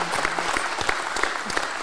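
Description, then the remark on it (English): A crowd claps steadily for an introduced rowing head coach of Temple University in Philadelphia, a dense, even patter of many hands at moderate volume, filling the short stretch without pause or any voices. “Round of applause, everybody.”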